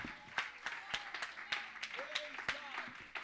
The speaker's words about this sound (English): Somebody clap your hands and give him great praise.